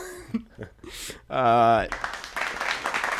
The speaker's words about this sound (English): I just downloaded the applause today, which is why I'm using it so much. Well, this was... It's good applause.